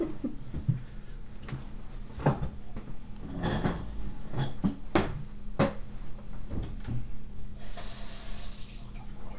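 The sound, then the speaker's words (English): A few knocks and clatters at a sink, then a tap turns on and water gushes steadily into the basin for a couple of seconds, loud and hissing, as someone runs the tap to flush the pipe before getting a glass of water. “I, like, don't want the water that's been sitting in the pipe for, like, 3 hours.”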